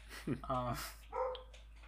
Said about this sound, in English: But oh, there's another dog barking now.